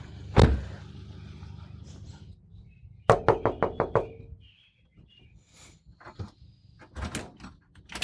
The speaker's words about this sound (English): Knock, knock.